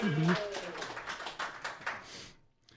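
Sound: small group clapping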